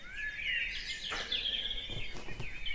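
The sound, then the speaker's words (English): A dense dawn chorus of many different birds singing at once, overlapping chirps, trills and warbles filling the air continuously, lively, with no voices present. “A torrent of different birds all singing at once.”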